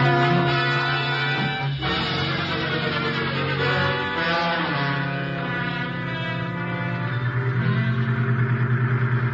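A vehicle engine runs steadily for several seconds, a loud droning rumble with a throaty hum that holds even throughout, no voices present.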